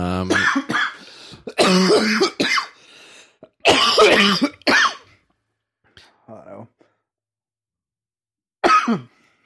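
Someone coughs and sputters in a loud, choking fit, several harsh bursts close up, then a pause with a faint wheezy breath and one more strained cough.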